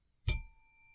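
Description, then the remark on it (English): A single bright bell ding, rung as a warning to control a panel of guests, its clear metallic tone ringing on and slowly fading after the sharp hit, with no voices or other sounds around it. “To help me control my rowdy panel of recidivists and reprobates, I will employ what I have called the inappropriate bell.”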